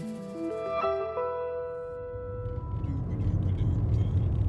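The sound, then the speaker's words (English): Steady, loud low road rumble from inside a car driving from Columbia to Greenwood, South Carolina, takes over after a few sustained tones fade out in the first couple of seconds, continuing without any voices. “We're driving from the capital, Columbia, to Greenwood.”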